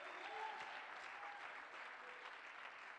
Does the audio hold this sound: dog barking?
no